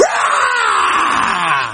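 A loud, sustained excited yell from one voice, raw and strained, holding for nearly two seconds before breaking off, with no other talking.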